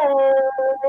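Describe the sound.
A person vocally imitates an air horn: a loud, sustained, buzzy tone held for about half a second, then broken into two shorter blasts with a slightly wavering pitch.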